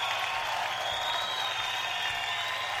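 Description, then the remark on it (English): A crowd cheers and applauds in a steady, dense roar that holds at an even loudness for about three seconds, with no single voice standing out. “Crowd very happy to hear Jeff's out there.”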